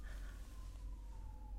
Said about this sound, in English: Wow, who is committing a crime? The ambulance. Oh my God.